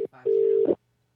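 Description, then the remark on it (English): After a call to a randomly generated U.S. phone number, a short, loud electronic telephone tone sounds once, a steady pitched beep lasting about half a second after a brief blip, harsh and alarm-like before cutting to silence. “That sounds like a warning. Like, you know, like a biohazard alarm. That's not a dial tone.”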